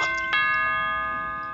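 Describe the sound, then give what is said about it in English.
A doorbell chime, rung by Raja the dog pressing it with her nose, rings out alone: two quick bell-like strikes followed by a long, steady tone that slowly fades over about a second and a half. “I heard the doorbell ring, and I just look outside and I thought someone had maybe brought back our dog.”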